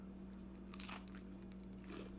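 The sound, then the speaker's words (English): A crisp crunch as someone bites into a fried potato pancake made from leftover mashed potatoes with bacon and shredded cheddar cheese, followed by a few quieter chewing crunches, with a steady low hum underneath. “Bacon cheddar, potato pancakes with leftover mashed potatoes.”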